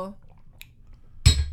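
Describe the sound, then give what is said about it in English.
A glass is set down hard on a surface with one loud, sharp clunk and a bright ringing clink, following a faint trailing bit of voice and near-quiet. “You know that is glass, right?”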